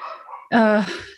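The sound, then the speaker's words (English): A single sharp bark from the speaker's spirited pet dog, loud and harmonic, cutting in abruptly after some low background murmur, then trailing off into quieter sound. “There's my barky dog. He must have come back from his walk.”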